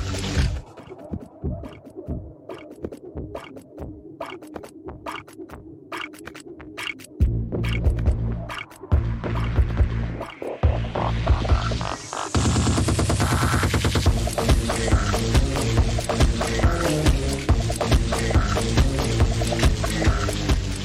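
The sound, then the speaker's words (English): A thumping electronic dance track made from hydrophone recordings of underwater animals at the Sea Life London Aquarium, with a pulsing beat of sharp clicks and knocks that swells into a dense, loud groove with a rising whooshing sweep midway. “the Sea Life London Aquarium has had a frankly genius idea of putting hydrophones in its aquarium and making a song based on recordings of the underwater animals. And that is the banging track that you can hear now.”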